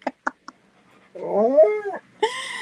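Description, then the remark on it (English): A dog whining for attention: a few short yips, then a long, wavering, high-pitched whine followed by a second rising whimper, fairly loud with no talking. “You're a lucky dog. Yes, I know. Anyway, sorry. He's seeing attention.”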